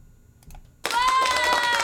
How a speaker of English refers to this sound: Hey, we got applause in the stream.